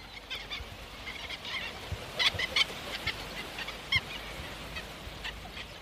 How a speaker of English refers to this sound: These are godwits flying overhead. You can hear them calling.